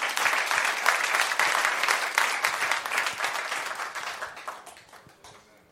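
An audience breaks into steady applause, many hands clapping densely together at a fairly loud level, then gradually thinning and fading out over several seconds.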